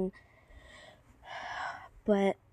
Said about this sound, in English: But I did that, and oh my god, I keep on yawning.